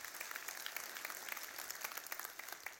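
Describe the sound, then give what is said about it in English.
An audience claps together, a dense, steady patter of many hands that fills the whole stretch at an even, fairly soft level, with no voices over it. “Hey, you can clap for that.”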